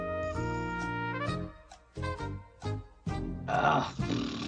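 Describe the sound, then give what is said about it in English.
A loud horse whinny: a long harmonic cry, then a few short throaty bursts and a breathy snort at the end, with no talking over it. “Oh, there's the horse noise.”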